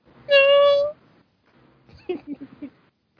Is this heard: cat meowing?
yes